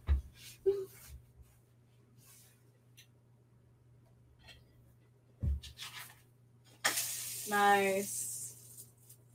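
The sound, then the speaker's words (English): Pancake batter hits a hot pan near the end with a sudden loud sizzle that hisses steadily for a couple of seconds. Before that there are quiet clicks and handling noises over a low hum. “I love that sound, just of the sizzle.”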